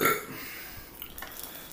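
human body sound, burp

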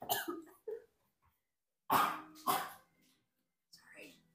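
human body sound, person coughing

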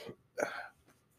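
human body sound, belch

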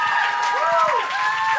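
crowd, audience applause and cheering

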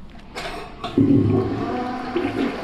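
household object, toilet flushing

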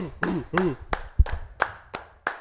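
crowd, audience clapping and applause

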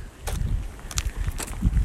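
nature, strong wind blowing

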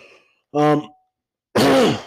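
human body sound, throat clearing

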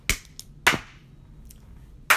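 human body sound, hand clapping

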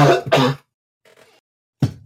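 human body sound, cough

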